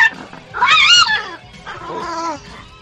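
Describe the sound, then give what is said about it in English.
A one-eyed dog makes two drawn-out, wavering, whiny vocal calls, the first higher and louder, the second lower and steadier, with no talking. “My one-eyed dog. He's got one eye.”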